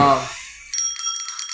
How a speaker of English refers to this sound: Where's my bell? Oh, there's my bell.